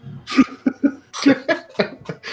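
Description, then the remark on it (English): A voice acts out a fit of harsh coughing up blood on waking, several rough hacking bursts in quick succession, fairly loud, with no talking in between. “I wake up coughing blood.”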